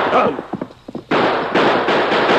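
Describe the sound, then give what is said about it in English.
A brief stretch of indistinct voices gives way to a loud burst of gunfire in a shootout with men camped ahead: about four sharp, harsh shots in quick succession, blending into one another in a rough, noisy volley. “We better put a few more bullets in them to make sure.”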